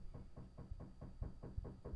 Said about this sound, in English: What is someone knocking on your door? I think they're just building stuff.